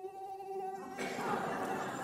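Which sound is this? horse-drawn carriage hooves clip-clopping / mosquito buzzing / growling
mosquito buzzing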